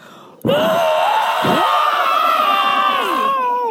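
A loud, sudden burst of layered screaming erupts after a brief quiet moment: Ben Burtt and Dave Acord raw scream sound effects combined with other recorded screams, several shrill voices blending into a sustained wail with added reverb that holds steady for a few seconds.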